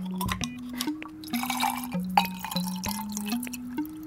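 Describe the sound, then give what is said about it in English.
Gin, then Saint-Germain elderflower liqueur, then tonic water are poured into a glass in a kitchen to make a cocktail, in several short bursts, with trickling and splashing and a steady low tone shifting pitch between pours; clear, with no talking. “Gin first, Saint-Germain, and then some tonic water.”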